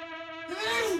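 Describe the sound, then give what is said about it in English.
A woman's single hard sneeze: a drawn-out, voiced inhale rises into a loud, noisy burst that trails off in about a second, with no one else talking. “Did she sneeze? That was a hard sneeze.”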